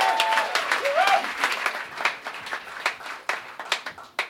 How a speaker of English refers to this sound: Guys, big, huge round of applause.